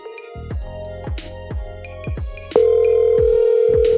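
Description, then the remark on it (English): A phone call to a pastor gives a steady ringback tone over a speakerphone, starting partway through and holding loud and continuous above a rhythmic thumping beat that plays throughout. No one speaks. “Yeah, like I got my pastor's phone number, I can hit him up right now, and he's gonna drop from a pastor's perspective 30 seconds on why church membership is important.”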